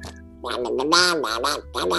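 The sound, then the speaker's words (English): A little brown duck quacks in a quick run of loud, nasal, raspy calls, four or five bursts close together, clear with no other sounds around them. “Oh, he's a little brown duck from the hood, basically.”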